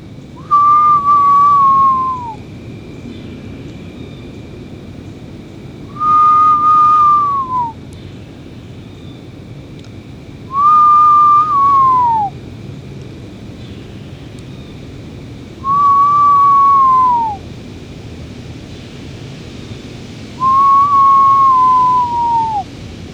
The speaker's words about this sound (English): Screech owls can be quiet sometimes. They're not always full volume.